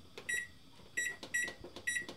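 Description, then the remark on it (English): Several short electronic beeps from an oven keypad as the timer is set for 15 minutes for a pan of granola, coming in quick irregular taps with faint handling noise between them. “And once you get your pan in the oven, set your timer for 15 minutes.”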